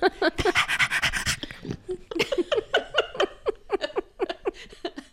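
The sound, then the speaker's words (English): A dog pants rapidly and steadily, quick breathy huffs repeating in an even rhythm after a brief burst of noisier, rougher breathing at the start. “Balls, panting, bacon.”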